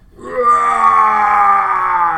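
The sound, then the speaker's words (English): A person voices a yeti's scream: one loud, sustained, strained roar that swells quickly and holds for about two seconds, with no other talk. “And right in front of you, you find a Yeti who screams, notices these are giving away a surprise.”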